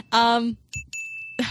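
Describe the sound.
A bell dings twice in quick succession, a bright, high ringing tone; the second strike rings out longer before fading, following a brief burst of voice.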